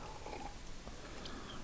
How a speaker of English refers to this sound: Sorry, a little slurp of coffee because I'm still trying to stay awake.